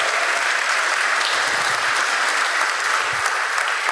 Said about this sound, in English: Excellent. Give a round of applause, folks.